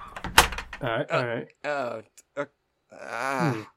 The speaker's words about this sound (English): He shuts the door and leaves.